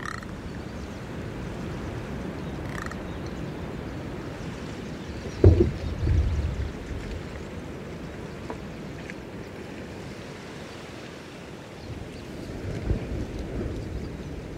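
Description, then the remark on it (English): A steady outdoor water soundscape in Glacier Bay of lapping, rippling water and low rumble as a glacier calves off an iceberg, broken by one sudden loud splash partway through, then a second softer surge. No voices. “This adventure in sound is part of the Wild Sanctuary series on a CD called Whales, Wolves, and Eagles of Glacier Bay.”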